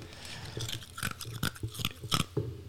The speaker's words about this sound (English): I don't want to chew in the microphone. No, it's too late now. Go ahead. Nope. Chew in the microphone.